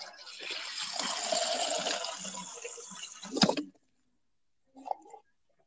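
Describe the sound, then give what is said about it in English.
Water pours steadily into a container for a few seconds, a rushing stream that cuts off abruptly, followed by a brief murmur of a voice. “Hold on. I need to get water.”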